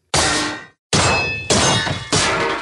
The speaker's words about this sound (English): Jack Frost gave me this gorgeous gold-plated naughty stamp. Oh, yeah, it's so satisfying. I just drop it like a hammer.